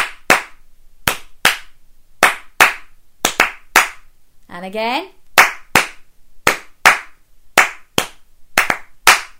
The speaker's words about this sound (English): So listen carefully to the crayons tapping and then we'll have a go at doing it. Okay, are you ready to clap with me?